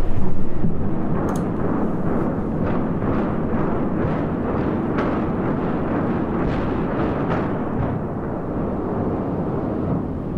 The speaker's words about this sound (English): But in April of 1998, the Aladdin went bada bang bada kaboom. You know why? Because that shit was imploded, that's why.